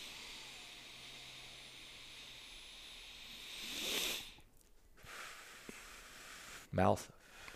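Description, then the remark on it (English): A slow, airy breath drawn in through a squeaky nose during a counted breathing exercise swells to a soft hiss, then ends in a short, loud squeak that slides down in pitch. “If you want to do it with me, just listen to my nose. My nose squeaks a little bit, so it's really easy to hear it.”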